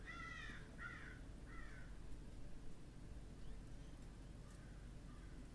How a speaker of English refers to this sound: You hear birds and small rustles, but everything else is still.